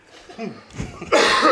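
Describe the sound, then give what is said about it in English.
A man coughs over a microphone, a couple of rough, breathy coughs building into a louder, harsh burst at the end, with a bit of voiced sound mixed in. “Well, you've been coughing for like 20 minutes over the mic.”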